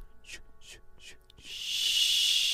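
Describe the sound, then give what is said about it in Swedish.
A voice imitates a slow steam train, the Harry Potter train: four evenly spaced, breathy chuffs, then a long, loud, steady hiss like escaping steam. “Så låter vårt tåg.”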